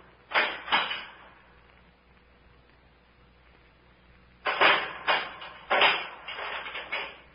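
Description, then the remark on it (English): A door being unchained and handled: a couple of clattering knocks, a pause, then a longer burst of rattling and thumps as it is opened, something is put inside, and it is shut again. “Someone put something inside the door and closed it again.”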